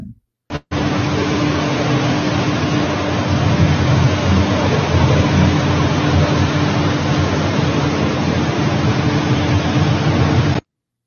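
A steady, loud whirring drone of drones flying and spraying over a city in China, above people, lasts about ten seconds, a broad hiss with a faint low hum running through it, starting abruptly after a brief blip and cutting off sharply.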